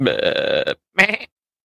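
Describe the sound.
A person imitates a goat's bleat with a long, wavering nasal call followed by a shorter, rougher second bleat, loud, with no other sound.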